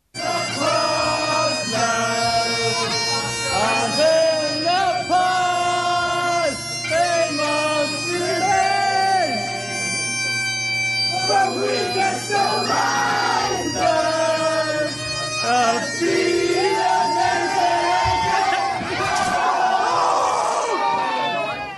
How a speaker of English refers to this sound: Yes, as you can imagine, he decided to stand on a chair and start playing on a chair. So initially the crowd gave him a cheer as if to say, oh, hey, and then it was like, oh, because he took a nosedive.